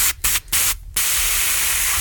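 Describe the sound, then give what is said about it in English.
A can of black aerosol spray paint hisses in three quick bursts, then holds a steady, loud spray for over a second. No voices are heard. “Get me some rattle can black, and I'll spray them up.”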